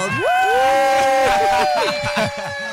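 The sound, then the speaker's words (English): A loud burst of crowd-cheering sound effect played in the Good Hope FM radio studio, led by a long rising whoop over a dense wash of shouting voices, sustained for about three seconds before tapering slightly. “Hold on, and the crowd goes wild.”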